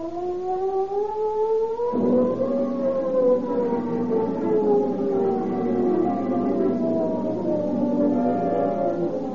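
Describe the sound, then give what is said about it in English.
A loud wailing prison escape alarm siren at San Quentin sustains a steady tone, its pitch climbing then slowly sagging and rising again, with a low rumble underneath and no voices. “The ominous wail of the San Quentin siren is the call to arms, which mobilizes Marin County law enforcement officers into a huge posse.”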